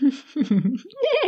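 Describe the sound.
A person imitates a horse whinny: a loud, wavering vocal neigh lasting just over a second, dipping low in the middle and then climbing into a higher, trembling whinny at the end.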